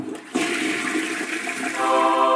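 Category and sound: household object, toilet flushing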